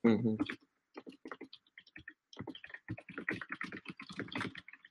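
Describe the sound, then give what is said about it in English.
A brief voice at the start, then a run of quick, irregular keyboard clicks, tapping in uneven bursts as someone types steadily on a computer keyboard for several seconds, commenting to people on YouTube. “While you're typing, I'll bring up a verse that did make me think about the lesson as well.”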